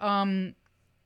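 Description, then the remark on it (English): A single loud meow from a cat named Georgia, lasting about half a second, with a steady tone that drops off at the end, followed by quiet. “Now, sometimes, a little kitty cat's here.”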